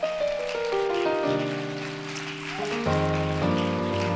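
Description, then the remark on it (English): A crowd claps steadily in a dense, rain-like patter, giving a hand clap of praise to the Lord, while sustained organ chords hold and shift underneath. No one speaks. “I wonder if we could really give the Lord a good hand clap of praise.”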